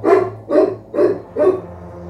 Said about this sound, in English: My day started, much as you're hearing right now, with the dog barking at 5 o'clock in the morning.